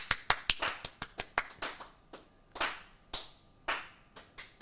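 Brief, scattered clapping for a new studio mascot named Dragon, with a handful of sharp claps at first that thin into slower, softer, uneven hits over a few seconds. No one talks.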